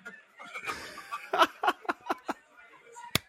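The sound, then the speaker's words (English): A handful of soft, sparse hand claps from an audience, quiet and unevenly spaced, follow a brief breathy chuckle, like a small polite golf clap. “Golf clap.”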